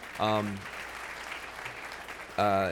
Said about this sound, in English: You can clap for Yes We Code if you want to.